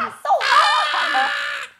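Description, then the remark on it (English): A single shrill, playful scream from one voice, held steadily for over a second after a brief vocal lead-in, then cutting off abruptly. “So what do they do while they're riding the shooting star? Scream.”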